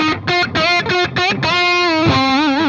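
An electric guitar, a Gibson Les Paul with hot-wound pickups and Bumblebee capacitors, plays a short phrase with a warm, lightly driven tone: several rhythmic picked notes, then a sustained note with vibrato ringing out clearly on its own.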